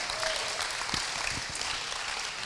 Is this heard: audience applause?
yes